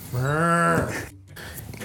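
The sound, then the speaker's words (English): A person imitates a cow with a short, loud, droning moo lasting under a second, followed by a brief pause and soft room noise. “He's into cowbellowing.”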